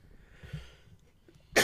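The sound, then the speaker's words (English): A single sharp cough, caused by eating spicy nuggets, bursts out loudly at the very end, following a stretch of quiet breathy noise with no talking. “I had to take a nice cough because I'm dying of spicy nugs.”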